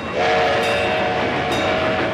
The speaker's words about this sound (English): great scene of Kevin's head on the tracks of this kid's train ride that goes around Santa's castle. And he has to roll out of the way of that. And it's just the way it's shot is like the train is up really close.